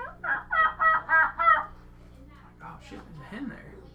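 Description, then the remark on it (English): A wild turkey hen cuts and clucks in a quick run of about five loud, sharp calls, followed by a man talking softly. “So, this hen's cutting and clucking and purring.”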